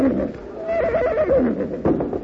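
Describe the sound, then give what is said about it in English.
A horse whinnies once, a loud, shaky neigh that wavers up and down in pitch before trailing off, with a steady rumble of background noise around it, as its rider falls off and the horse steps on him. “Jack fell off his horse.”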